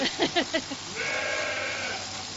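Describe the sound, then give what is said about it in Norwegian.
A few quick, choppy sounds give way to a single long, wavering bleat from a sheep being shorn, holding steady for over a second, clear against a faint background hum. “Det litt sånn at hvis sauen først begynner å sprelle, så har du, da klarer han å putte alt sammen I en haug, og det ikke så veldig ordentlig.”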